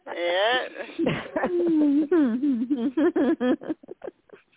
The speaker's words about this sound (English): Okay, well, the cat fight's over. I kicked him out, and he's out on the porch, so okay.